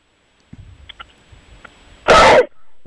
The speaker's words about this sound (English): I just coughed in the show. That was the second one.